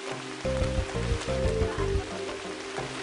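Steady, dense hiss of heavy rain pouring down on a village overlooking the ocean, with highland mountains behind it, with a deep rumbling hum swelling in the background for a couple of seconds before fading.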